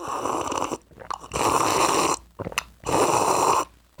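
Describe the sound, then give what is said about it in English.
Three loud, drawn-out gulps of Black Powder coffee from a cup in an even rhythm, each a thick swallowing rush, separated by short breaths and small clicks, with no talking. “Sorry, I had to do the three gulp on that one. By the way, that's coffee.”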